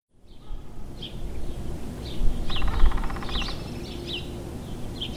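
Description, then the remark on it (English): Backyard birds chirp in short, repeated calls scattered throughout, with a brief buzzy trill partway through, all over a steady outdoor background hum. “A backyard can be an excellent place to listen for birds.”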